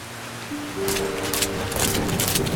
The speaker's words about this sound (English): Can't see shit out here. This storm came out of nowhere.